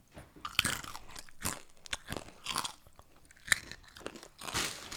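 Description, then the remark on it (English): Loud crunching of crispy snack chips, a rapid series of sharp, bright bites and chews across the whole stretch with brief pauses between, no talking. “These are insanely crunchy.”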